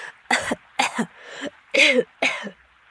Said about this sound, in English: After that, the boy started coughing up the water and grabbed Xolotl, who dragged him to safety, reaching the other side.